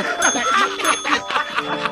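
Bells ring repeatedly in quick, uneven strikes, their bright metallic tones overlapping and lingering as a steady shimmering hum beneath the clanging.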